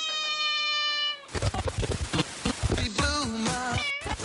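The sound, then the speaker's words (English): A cat meows over loud, busy music at a house, its drawn-out, wavering cries rising and falling near the end, after a brief steady tone at the start. “When they got there, they were surprised to find that no one was there except a cat.”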